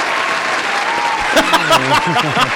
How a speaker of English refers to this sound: Gotta get that applause. I didn't know we had that. That's cool. That's cool.